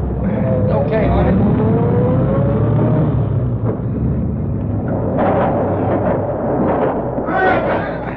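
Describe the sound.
A car engine rumbles loudly and steadily as the vehicle drives in through an opened door, a low continuous drone with brief bursts of hiss, and faint muffled voices underneath.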